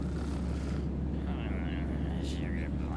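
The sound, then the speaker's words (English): A steady, heavy low drone like an airplane cabin at cruise fills the whole stretch without letup, with faint voice-like sounds and a brief higher sweep drifting over it. “Open the emergency door and bail out of the plane?”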